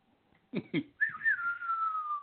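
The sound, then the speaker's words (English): A spaghetti western showdown tune, as heard in Clint Eastwood westerns, is whistled: two quick sharp notes, then one long, clear, sliding whistled tone that holds steady and fades slightly, fairly loud. “Anytime he would hear that whistling from any of those fucking spaghetti westerns that Clint Eastwood would end, he would bark and fucking howl and go nuts.”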